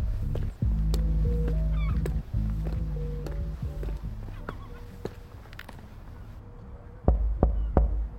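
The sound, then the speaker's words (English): Three sharp knocks on a door come in quick succession near the end, following a stretch of soft tonal music and scattered clicks, in the audio drama Flies in the Jar. “Is that you knocking on my door?”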